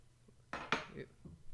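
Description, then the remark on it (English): Two sharp hand claps in quick succession, made to sync recordings when switching to different microphones, fairly loud, with a soft clatter and faint room noise trailing after them; no one speaks. “Let's clap, and then we'll be able to put the clap to”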